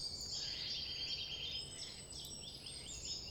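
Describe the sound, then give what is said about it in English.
A dense chorus of high, overlapping bird calls and chirps fills the scene continuously, with many birds singing over a soft low outdoor rumble. “Listening to a bird call is good practice for life.”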